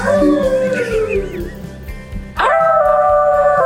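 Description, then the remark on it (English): A tiny dog at home howls in long, wavering, drawn-out tones, with a sliding pitch that drops away before a second loud howl starts abruptly and holds steady, prominent with no talking. “because my dog is my best friend and he can make as much noise as he wants.”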